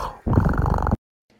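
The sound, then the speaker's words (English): A person imitates a cat with a loud, throaty, rolling purr that holds for under a second after a soft low rumble, then cuts off into silence. “I liked the purrs at the end. I feel like it really sold it as a cat.”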